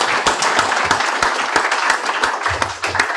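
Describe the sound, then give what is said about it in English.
An audience at the Football Writers Festival applauds steadily, a dense wash of many hands clapping with a few sharper individual claps standing out, sustained at a fairly loud, even level throughout. “Round of applause.”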